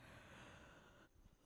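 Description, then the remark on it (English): A long, breathy yawn close to the microphone, drawn out for about a second with a faint voiced tone, then a brief pause and a sudden sharp noise at the end. “Yawning loudly into the mic.”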